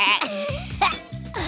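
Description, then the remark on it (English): Kapow, a mechanical pygmy goat, bleats in a few loud, strained, wavering cries that come in quick succession with a slightly artificial, electronic edge. “That's Kapow, my mechanical pygmy goat.”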